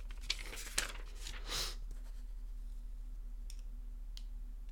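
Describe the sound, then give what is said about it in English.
Paper rustles and crinkles for about two seconds in quick bursts, then a few faint clicks break a quiet, humming background. No one speaks. “Had to get my little thing, my little paper.”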